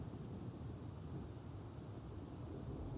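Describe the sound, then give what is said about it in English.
A deep, continuous rumble of thunder rolls through a storm, steady and heavy in the low end, with a faint hiss like rain behind it. No one speaks. “Ever since then, I get really scared whenever there's a storm.”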